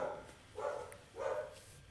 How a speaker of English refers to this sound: you know, your dog's barking too.